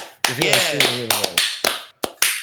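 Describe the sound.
A handful of sharp, close claps ring out at an uneven pace, about seven in all, with a voice calling out over the first half.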